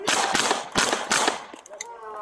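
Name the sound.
gunshots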